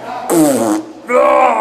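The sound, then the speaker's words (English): Two loud, buzzy fake fart sounds made by mouth, each about half a second long, with a short gap between them. They are prominent, with no talking. “Fake farts in the bathroom.”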